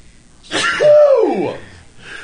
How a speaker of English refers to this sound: I'm going to sneeze.